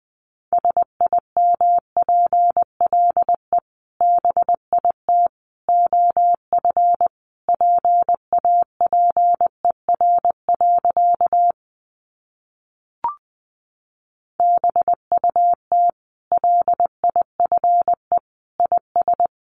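Morse code sent at about 20 words per minute: a single steady mid-pitched tone keyed into quick short and long beeps, with a silent pause partway through broken by one brief click.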